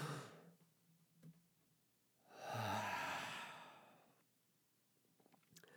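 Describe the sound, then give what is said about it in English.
A slow, deep breath drawn in and let out, with a long breathy exhale swelling in the middle of an otherwise quiet stretch. No one speaks. “Let's just breathe together for a minute”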